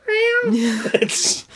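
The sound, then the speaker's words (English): A person imitates a cat's meow: a single drawn-out, high, nasal mew that slides down into a lower vocal tone and ends with a soft breathy hiss. It is fairly loud. “and see all the way into his stomach where there was a live cat mewing to be let out.”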